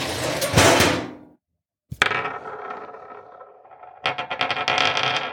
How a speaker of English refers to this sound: I can open the drawer where we store the dice, but then what? Open it quickly. It may cause the die to fly out, effectively rolling it.